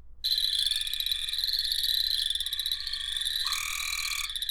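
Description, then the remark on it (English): A Cope's gray tree frog gives a loud, continuous buzzy trill, sustained for several seconds, with other frogs calling faintly in the background and no talking. “So here is a Cope's gray tree frog for our listeners out there.”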